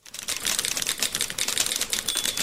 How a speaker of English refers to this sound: But anyway, ended up taking typing and absolutely loved it. Loved typing. I literally fell in love with the typewriter.